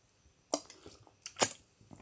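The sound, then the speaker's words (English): Quiet, dry mouth sounds from a person whose mouth has gone dry from talking: a few sticky lip smacks and tongue clicks, irregularly spaced, with two sharper clicks standing out, and no talking. “Sorry, are these sounds that I make annoying, like with my mouth?”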